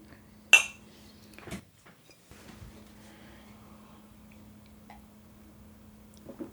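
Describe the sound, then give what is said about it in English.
Beer glasses clink in a toast: a bright glassy clink rings out early, followed by a softer knock, then quiet with a low steady hum underneath and a faint clatter near the end. “Makes Cheers. Sense.”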